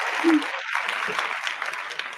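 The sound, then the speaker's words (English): A steady wash of crowd applause and cheering fills the whole clip at moderate loudness, dense clapping blended with a roar and no single voice standing out. “Where's the cheering?”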